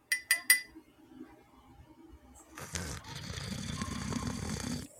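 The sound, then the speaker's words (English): Three quick, bright clinks of a mug, a brief quiet pause, then a steady, noisy slurp as someone sips hot cafecito (coffee) from a mug, lasting a couple of seconds with no talking. “And join me in this sip of cafecito.”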